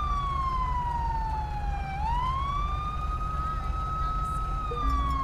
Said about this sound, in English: Let's go ahead and get our siren off here.